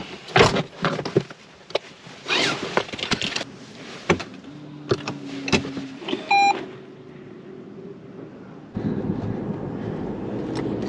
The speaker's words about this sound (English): Why is my car beeping at me?